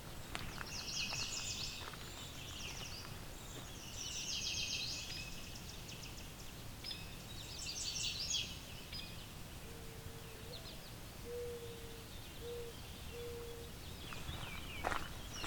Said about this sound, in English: Yellow warbler.